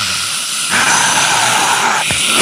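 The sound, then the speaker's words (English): A loud, continuous wall of a concert crowd screaming in Japanese, recorded on a live album, shrill and hiss-like, surges up after a moment and then holds steady with no music clearly standing out. “People screaming in Japanese. If you don't mind this sound for 46 minutes.”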